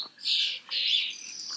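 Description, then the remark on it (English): Small birds chirp and twitter steadily outdoors in an area with many doves and sparrows, a bright, continuous high-pitched chatter with two louder bursts, without any talking. “A lot of doves around here. It's like all of a sudden, it's like become a sanctuary for doves. And a lot of sparrows, of course.”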